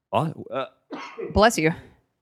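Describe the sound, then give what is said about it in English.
A loud sneeze with a couple of short voiced catches building up to a sharp, breathy burst, followed by a brief trailing vocal sound. “Bless you. Excuse me.”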